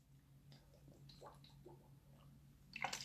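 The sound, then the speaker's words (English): Wet, squishy mouth sounds of someone sipping and swallowing water, soft and intimate over a low steady hum, with a slightly louder gulp near the end. “I'm lubricating my throat chakra. I'm over here turned up on this water.”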